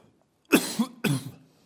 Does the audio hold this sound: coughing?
yes